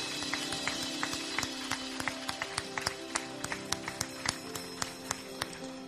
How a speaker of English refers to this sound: Oh, if you believe it, give him a hand clap of praise, would you?